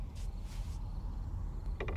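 The front door of a house creaks open against a steady low rumble of heavy wind as a couple of leaves blow into the house, with two soft scraping swishes followed by a quick rattling click near the end; no voices.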